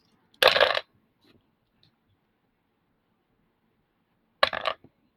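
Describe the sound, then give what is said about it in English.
Dice rattle and clatter in two short, bright bursts about four seconds apart, with a couple of faint ticks in the quiet gap between them; no one speaks. “Come on, give me that dice.”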